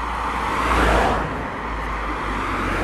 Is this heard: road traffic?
yes